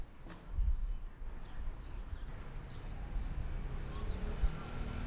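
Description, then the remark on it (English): Steady low rumble of city street traffic in Rome with scooters and motorbikes passing, a continuous wash of engine noise with a few faint chirps above it. “Of course, right now you can mostly hear traffic.”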